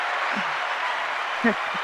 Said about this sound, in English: Hold on. We're going to clap it up for you real quick.